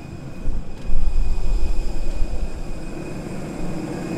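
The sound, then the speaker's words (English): A steady, loud low rumble of airplane noise on arrival at an airport in Namibia, with a faint high whine running through it and no voices. “All right, we are off the plane walking into the airport.”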